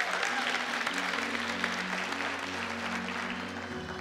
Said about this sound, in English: Can we give our worship team a round of applause? Tell them we appreciate them.